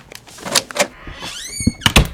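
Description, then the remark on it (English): A door is opened: a couple of sharp latch clicks, then a rising, squeaky hinge creak, ending in a solid thump. No one speaks. “Oh, shall I? Before he knocks down the door.”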